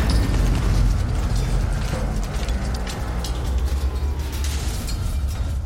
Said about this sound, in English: The drive turbines of the dray whine into life. You steer the clumsy machine towards the freight doors and push the throttle forward. It roars and accelerates at quite a frightening pace down the ramp and into the doors.